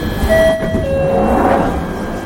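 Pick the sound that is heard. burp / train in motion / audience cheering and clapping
train in motion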